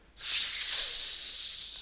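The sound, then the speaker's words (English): A person hisses like a snake: one long, sharp, airy "sss" that starts abruptly, stays loud for under two seconds, and slowly fades, with no other voices. “It's like the battle cry of a snake.”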